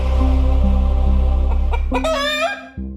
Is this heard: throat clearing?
no